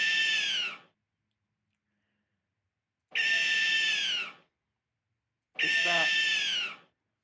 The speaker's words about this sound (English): Owl number two. Owl number two for you there.